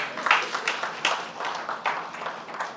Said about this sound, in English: I'm glad y'all are clapping.